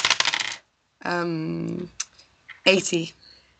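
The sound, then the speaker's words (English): Dice clatter and tumble across a tabletop in a quick rattling burst, followed by a short tonal hum and another brief rattle of dice. “God, I'm rolling so badly.”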